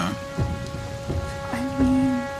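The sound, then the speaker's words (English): A freezing sleet storm: a steady, dense hiss of driving precipitation with a few deep rumbling thumps and a faint sustained drone underneath, no voices. “The air is going to erupt in freezing sleet.”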